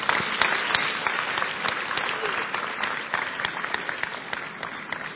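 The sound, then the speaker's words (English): An audience claps for Jesus after a prayer. Many hands produce a dense, crackling wash of applause that holds at an even loudness for several seconds without talking over it. “Clap for Jesus.”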